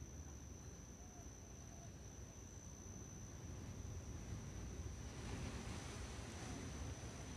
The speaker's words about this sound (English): Now, on this particular day of recording the mermaid lava pools, the waves and communication from the ocean are strong and present. The waves, the largest and strongest I have experienced yet with these lava-made pools.